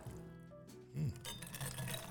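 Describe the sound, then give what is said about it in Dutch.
A Belfius mocktail with mint is sipped through a sustainable straw, a soft, airy slurping of liquid that lasts about a second after a brief tonal murmur at the start. “En dan gaan we de Belfius mocktail eens proeven.”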